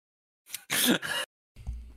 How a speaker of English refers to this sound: Also, from IGN's YouTube channel, we've got a coughing fit.